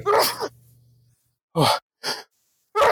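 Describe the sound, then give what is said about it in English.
A loud sneeze, blamed on pollen, bursts out, followed after a short pause by three quick, sharp nasal bursts in a row, like smaller follow-up sneezes or sniffs, with no talking. “I feel like I'm going to sneeze.”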